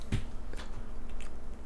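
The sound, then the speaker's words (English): Wet chewing of soft cantaloupe, with a few squishy bites spread unevenly over a couple of seconds and a low steady hum in the background. “Choked on my cantaloupe.”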